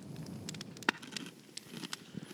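A crackling fireplace gives off irregular, sharp pops and snaps over a soft low rumble, with one louder crack early on. Fairly quiet overall, with no voices.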